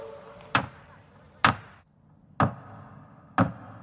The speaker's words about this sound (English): I have my gavel and I'm going to go and do this iconic knock at the door